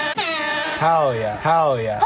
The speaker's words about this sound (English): I don't know where my air horn is anymore, but I'd hit some air horns if I knew where they were. Cat air horns and hell yeah sound effects.